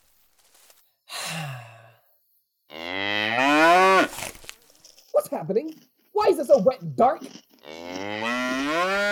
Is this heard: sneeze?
no